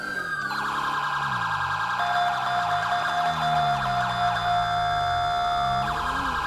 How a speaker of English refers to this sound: Is that the ambulance I hear, too?